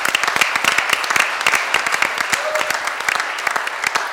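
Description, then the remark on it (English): A crowd applauds for God, many hands clapping in a dense, continuous patter that stays fairly loud throughout, with no voices standing out above it. “Can I get a round of applause for God?”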